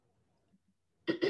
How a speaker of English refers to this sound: get that frog out of my throat.